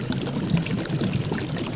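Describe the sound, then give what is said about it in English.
Water bubbles and gurgles steadily, a dense, continuous churning with no pauses and no voices. “No, not those bubbles.”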